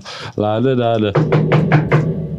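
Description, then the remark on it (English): A long, drawn-out vocal sound gives way to four quick, evenly spaced knocks on a front door. The knocks are fairly loud, with a steady rhythm. “Open up. It's the place. Oi, we know you're in there. Open up.”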